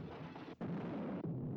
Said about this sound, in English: Look, all the people disappear when it cut to the explosion. There's nobody in the frame.